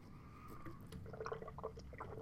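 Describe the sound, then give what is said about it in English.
Wet sounds of someone chugging 50 ounces of water, with a run of small liquid gulps and swallows over a quiet background. No one speaks. “Like, I'm drinking this 50 ounces of water. Like, I'm gonna drink this before we're done.”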